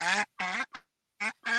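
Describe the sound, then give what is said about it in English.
A duck sitting on its eggs quacks harshly and insistently as its egg is being collected, a series of loud, raspy calls in quick bursts with short pauses between them, sounding agitated. “Oh, there's still a duck on the eggs.”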